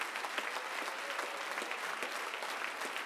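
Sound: audience clapping hands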